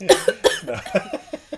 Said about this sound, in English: By the way, coughing and hiccuping hurts.